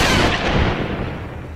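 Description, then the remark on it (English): A loud, booming gunshot, its blast trailing off into a long rumbling roar, with no voices present. “And then, the first gunshot rang out.”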